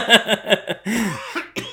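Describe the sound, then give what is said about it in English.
A quick burst of four or five short, rhythmic coughs, followed by a longer rasping, throaty exhale and a final brief cough. “Ooh, coughed.”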